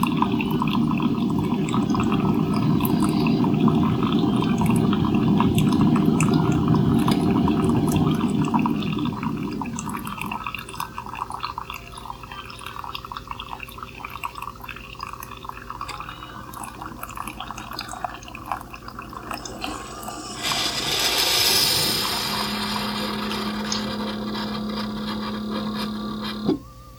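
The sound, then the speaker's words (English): A coffee maker with a 60-ounce reservoir gurgles and hisses as it brews strong coffee, liquid steadily trickling and dripping into a cup, then a louder burst of steam and a low mechanical hum near the end. “That's taking a little longer than it normally would to fill the cup because I choose strong brew, which means that it pours grounds in the pot a little bit more slowly.”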